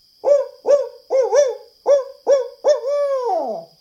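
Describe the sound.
A human voice imitates a barred owl's hoot call: six short, rhythmic hoots followed by one long, drawn-out hoot that slides downward at the end. It is fairly loud, with no talking.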